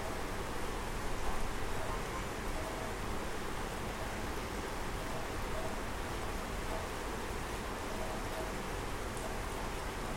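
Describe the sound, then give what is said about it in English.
Steady rain falls without pause, a dense, even hiss spread across the whole range, holding a constant moderate level for the full length with no voices or other sounds. “Notice how a rainy and gloomy day inside a certain kind of feeling inside yourself, and just feel through it.”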